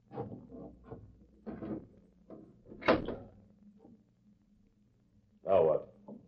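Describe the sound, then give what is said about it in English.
A window is pushed open with rattling and scraping, then two louder grinding, squeaky shoves. A low steady hum sits underneath. “Go over there and open that window.”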